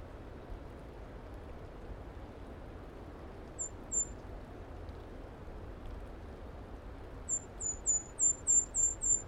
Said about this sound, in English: Here's a new bird, a golden crowned kinglet.